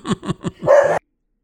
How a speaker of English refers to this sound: Loudest dog on the planet.